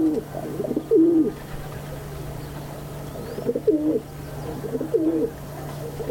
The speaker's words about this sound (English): By northern India's Lake Pichola, rock doves roost on a windowsill at water's edge.